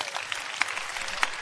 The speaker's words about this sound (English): What a blessing. Clap for yourself.